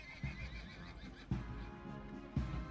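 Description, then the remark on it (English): Horses' hooves clip-clop on the way toward Hyde Park Corner on a summer day in a slow, uneven rhythm: three sharp, heavy knocks about a second apart over a steady low rumble, with no voices. “From the clip-clop of the horses' hooves, to the faint rustle of the summer leaves, to the distant click of cameras, as a small, excitable crowd gathered, unaware that they were trotting into a trap.”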